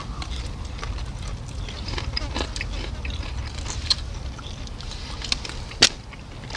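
Crunching as someone bites and chews crisp food, a run of irregular crackly snaps over a low steady background rumble, with one sharper crunch near the end.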